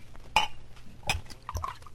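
Glassware clinks twice at a bar, a whiskey bottle tapping a glass, followed by a soft, brief trickle of whiskey being poured, fairly quiet with no talking.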